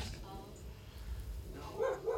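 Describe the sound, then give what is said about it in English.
A dog barks twice in quick succession near the end, sharp, as it senses something outside, over a low background murmur with faint voices. “Oh, the dog senses something outside. That's not part of the movie.”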